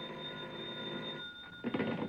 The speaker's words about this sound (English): And then a bell started ringing somewhere and woke me out of a sound sleep.